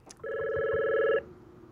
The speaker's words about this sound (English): Sorry, my phone's ringing.